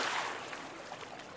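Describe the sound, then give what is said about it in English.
Steady rushing river water with soft splashes and swirling around a pole pushed into the water onto the river bottom for balance while crossing the river, fairly full, continuing evenly for a moment with no voices. “You can hold it in front of you, or push one end into the water and onto the bottom of the river to help keep your balance.”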